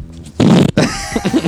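A loud, close fart rips out in a thick, rumbling burst, then a second, longer sputtering fart follows after a brief pause, with faint tonal sounds behind it.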